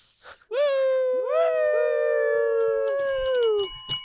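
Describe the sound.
A person lets out a loud, sustained wolf-like howl, rising in pitch, holding a long wavering note, then sliding down, with a brief noisy burst at the end.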